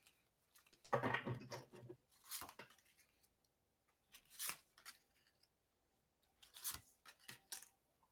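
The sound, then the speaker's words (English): A deck of tarot cards being shuffled for a reading: a dense papery riffle, then several crisp, scattered slaps and flicks as the deck is squared and cut. Quiet, with no voices. “Give them one more good shuffle.”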